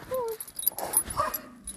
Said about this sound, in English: Oh, for God's sake, dog.